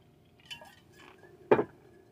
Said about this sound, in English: And I get a drink of water here. Excuse me.